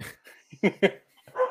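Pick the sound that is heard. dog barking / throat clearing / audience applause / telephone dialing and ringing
dog barking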